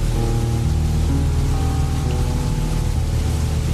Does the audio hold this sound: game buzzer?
no